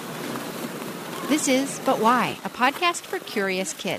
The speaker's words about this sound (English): That's the sound of ice skating. If you live in a part of the world where there's winter, or if there's a rink nearby, it may be something that's a pretty familiar sound to you, and maybe you like skating too.